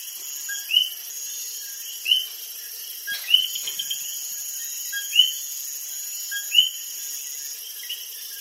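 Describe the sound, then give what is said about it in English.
Coqui frogs in Las Marias, Puerto Rico, give short, rising two-note chirps every second or two against a steady, shrill drone of night insects, with several frogs calling. “Before we go, we leave you in Las Marias, Puerto Rico, in the company of Cokie frogs.”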